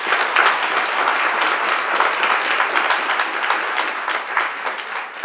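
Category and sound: crowd, audience applause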